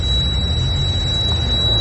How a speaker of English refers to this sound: But the alarm still going off. I mean, so this is the city. The city can't get a beeping alarm shut down in the heart of the business district.